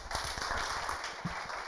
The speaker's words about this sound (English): I can't hear you. All right, clap for her.